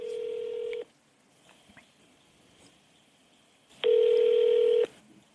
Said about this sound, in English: You are being transferred. Yeah, they don't have time to pick up the phone.